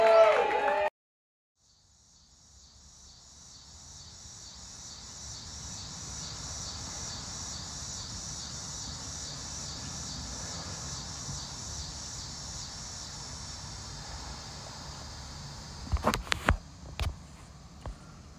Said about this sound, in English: It's June 13th in Nashville, Tennessee. That was a cicada or a frog. I don't know. Sometimes I get confused about what their sounds like.